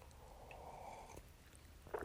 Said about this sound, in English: So I'm going to take a coffee sip here.